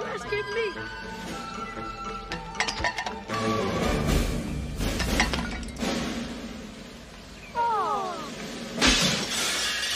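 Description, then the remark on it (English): Glass shatters in a loud crash in a scene from the film Little Giants, with a burst of tinkling shards, followed by more crashing and clattering debris as voices murmur underneath. “Nothing but glass.”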